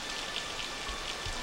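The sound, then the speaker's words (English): Steady rain patters down in a dense, continuous hiss of droplets striking a surface, with a few soft low thumps underneath; no voices. “And then they run off into the rain with the world's weirdest freeze frame ending.”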